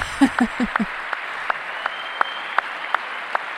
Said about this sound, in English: I had to fuck with the audio to make it where it's even listenable because his claps are... it's a giant spike in the audio.